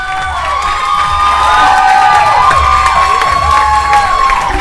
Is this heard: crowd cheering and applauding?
yes